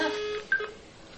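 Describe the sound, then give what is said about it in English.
A short electronic telephone-line tone from a newly plugged-in device being tested on a computer: steady paired pitches that shift briefly midway, then fade, not a standard Bell-type dial tone. It plays alone, moderately loud, with no voices. “Because that's not a Ma-Bell type dial tone.”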